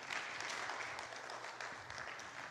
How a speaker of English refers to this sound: So give them a hand clap of praise.